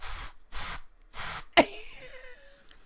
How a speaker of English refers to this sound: There's some red honeysuckle nectar glade spray there.